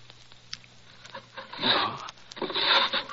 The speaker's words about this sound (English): I'll try the drawers. It's usually in the upper right. No, not here. Perhaps the left one.